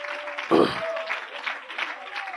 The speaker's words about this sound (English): Give the Lord a good round of applause tonight.